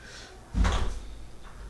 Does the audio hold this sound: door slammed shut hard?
yes